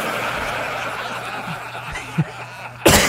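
A sudden, loud cough bursts right up against the microphone near the end, harsh and blown-out, spraying phlegm onto the mic, after a stretch of muffled background noise with a few soft snickers.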